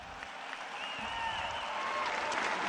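A large audience of peers applauds loudly and continuously, a dense wash of roaring clapping that swells slightly toward the end, with a few faint whistles rising through the noise.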